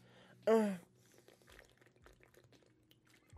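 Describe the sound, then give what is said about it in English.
One loud, abrupt gulp of a hydration drink, a brief throaty swallow with a falling tone, followed by quiet shuffling and faint background noise. “Yeah, that was a big gulp.”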